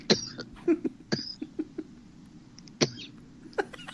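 A string of short, sharp coughs at irregular intervals, with a few louder hacking bursts among quieter ones, fairly close and with no talking.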